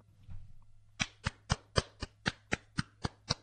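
A single person claps about ten times in a steady, even rhythm, each clap sharp and crisp. A low hum runs underneath, and no one speaks.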